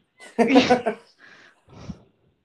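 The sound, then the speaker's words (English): A short, loud burst of snarling and yelping from dogs fighting, followed by a couple of quieter, rougher growls before it dies away. “Dog fight.”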